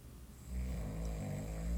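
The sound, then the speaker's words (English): A person snoring with a deep, rumbling rasp that rises after a quieter start and holds steady, fairly loud with no talking. “I've never heard you snore like that.”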